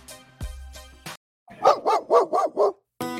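A dog barks five times in a quick, even burst, loud, with a few short unrelated noises just before and after.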